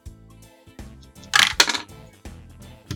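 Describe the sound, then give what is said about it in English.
A short clatter of two hit dice tumbling across a hard table, a couple of bright rattling bursts in quick succession, fairly loud against a quiet, steady background hum. “Wait, what are you using? Hit dice.”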